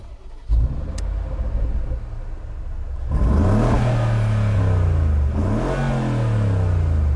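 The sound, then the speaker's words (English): A 5.5-litre car engine, from a car made before the new EU regulations, idles with a low rumble, then roars up in a loud rev, settles briefly and revs sharply again before holding a high growl. “This car, 5.5 litre, and it was before the new EU regulations. So let's have a little listen.”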